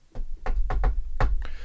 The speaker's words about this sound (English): There's a secret code. There's a secret code to get into the bathroom. It's a secret knock.